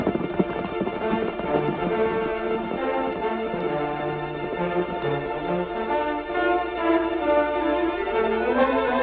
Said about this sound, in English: Hold on there! Out of our way! Watch out for the horses!